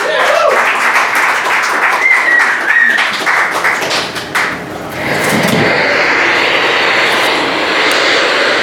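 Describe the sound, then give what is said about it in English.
A crowd applauds loudly as a speaker for the other side is introduced, with sharp individual claps at first that swell into a dense, steady roar of clapping sustained to the end, a few brief high whoops rising over it early on. “Ladies and gentlemen, for the other side, Reese McDonald, give her a hand.”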